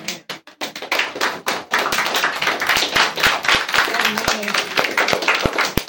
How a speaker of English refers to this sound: Y'all give God another hand clap of praise for his word on today.